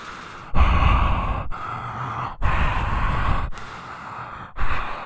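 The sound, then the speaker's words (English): Heavy, raspy mouth breathing, a film character's signature breathing heard after a movie's end credits, with several long, loud breaths in a slow, uneven rhythm, each a broad airy rush separated by brief pauses, and no talking. “It's his signature breathing. His mouth breathing.”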